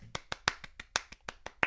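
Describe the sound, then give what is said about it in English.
About ten sharp hand claps in a quick, steady rhythm, each a crisp bright smack, with no talking over them. “Round of applause for sticking around.”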